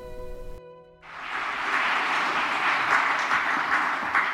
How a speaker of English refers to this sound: Thank you. That's a very generous round of applause. You might want to wait until after the talk.